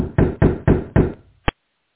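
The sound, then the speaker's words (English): Four firm, loud knocks on the door of hotel room 303, on the third floor of an inn, in quick, even succession, followed after a brief pause by a single sharp click, with no voices. “exits the elevator on the third floor of the Hedges Inn and knocks on the door of room 303.”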